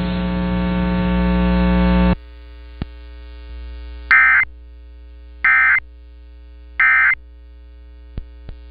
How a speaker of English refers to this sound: This station is conducting a required weekly or required monthly test of the emergency alert system.